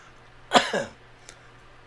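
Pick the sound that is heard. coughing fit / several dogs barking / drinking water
coughing fit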